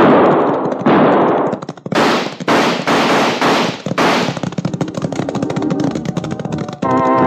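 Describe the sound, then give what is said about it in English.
Loud bursts of gunfire crack out in a rapid, chaotic volley during a shootout with two ambushers up in the rocks, several sharp shots overlapping in quick succession before settling into a rattling, steady barrage. No one speaks. “Either our shooting was better than we were entitled to expect, or the blackguards who tried to ventilate Phil's back didn't have any salt.”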